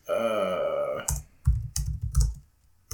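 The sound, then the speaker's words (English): Loud typing on a computer keyboard: hard clacking keystrokes in irregular bursts with short pauses, following a brief low, drawn-out tonal groan at the start. “You type so loud. Sorry. Beating on the fucking keyboard.”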